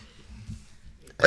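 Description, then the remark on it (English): A single sudden, loud sneeze bursts out at the very end, following a second of near silence with only faint low rumbling. “Okay. Bless you.”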